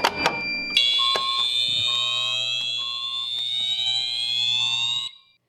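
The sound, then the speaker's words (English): A loud fire alarm blares with a continuous high-pitched tone, broken by repeated short lower beeps, after a brief clatter at the start. It cuts off abruptly after about four seconds. “So we found this video that's going to show you what fire alarms do so you never have this again.”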